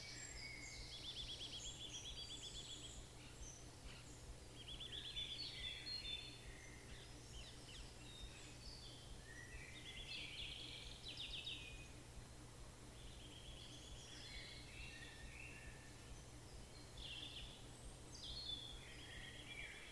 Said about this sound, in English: Focus on the blue shadows of the trees and the sound of the birds singing in the dusk.